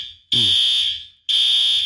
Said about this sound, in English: Possibly a more serious fire alarm. Do you hear that, guys? This is really getting a little nerve-wracking.